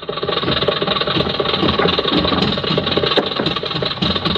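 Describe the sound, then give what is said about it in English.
The engine of a packed bus in Havana, called a wawa, runs steadily, a continuous low rumbling drone with a rattly, knocking texture that holds at an even loudness throughout, with no voices. “instead of hailing a cab, I figured I might as well take the bus”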